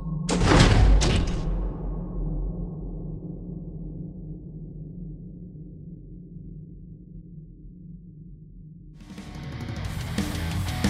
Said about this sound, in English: As you step into the building, you begin to hear the not too distant but slightly scattered sound of more gunfire as the sliding pair of double doors close behind you.